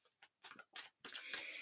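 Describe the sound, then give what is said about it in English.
A Wild Unknown tarot deck being shuffled: a few short, soft papery flicks, then a sustained rapid riffling patter, fairly quiet with no voices. “Just finishing up shuffling. I've been giving it a good shuffle, you know, reacquainting myself with it before starting to record.”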